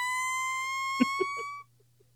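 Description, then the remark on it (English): A squeaky, high-pitched fart sound effect holds one flat buzzy tone for about a second and a half, broken near the end by three quick low sputters, then cuts off. “So I loaded up some fart sound effects and I think I've used them all already.”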